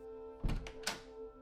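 A door opens with a solid thunk of the latch, followed a moment later by a second sharper knock-like clack, both over a steady low hum.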